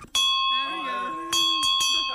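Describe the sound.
A metal bell is struck close by, its bright tone ringing on between strikes; it is hit again a few times near the end while people talk and laugh underneath.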